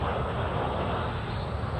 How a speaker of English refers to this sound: But I've been saying that when there's problems, here's a plane coming by reminding us to travel within.